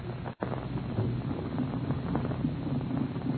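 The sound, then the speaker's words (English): The three engines of a huge propeller airliner, the Golden Dragon, idle softly before its first test flight, a steady low drone humming at a moderate, even level, with a brief dropout near the start before the rumble resumes and holds. “They are about to take off on their first test flight, and the three powerful engines are softly idling, the propeller blades lazily turning over.”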